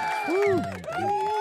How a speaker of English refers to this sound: Yeah, shout out to opportunities. Yeah, you get a round of applause.